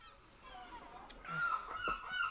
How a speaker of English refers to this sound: Outside, a squall of gulls seemed to irritate her.